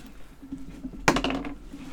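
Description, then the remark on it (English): Dice are rolled to see who rolls the higher number: a sharp clack as they land, then a quick rattle of small clicks that settles within about half a second, over a faint low background hum. “We can just go with who rolled the higher number.”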